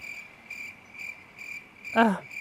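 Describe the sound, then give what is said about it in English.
Crickets chirp in a steady, high-pitched rhythm, a pulse about every half second, fairly quiet and constant, with one brief, louder sliding squeak near the end. “Is that crickets?”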